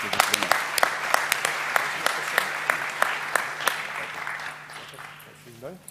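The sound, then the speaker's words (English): A crowd at an award ceremony applauds the award winners steadily, with dense, loud clapping and a few sharp louder claps standing out, fading slightly toward the end as a voice begins to speak. “Okay, and please applause again.”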